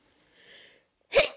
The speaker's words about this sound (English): Okay, you keep sneezing.